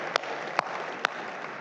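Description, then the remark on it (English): An audience applauds in a steady, dense wash of clapping, with three sharper, louder claps popping out at even intervals over the crowd noise; no voices are heard. “And I think we can applaud and say, yeah, God, you're faithful.”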